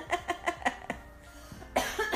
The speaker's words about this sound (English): Now you got me all coughing and hacking and stuff.